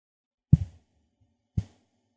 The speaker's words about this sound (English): Is that you touching the mic?